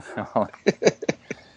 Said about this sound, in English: Our two dogs just bark. If there's anything outside, they get so excited.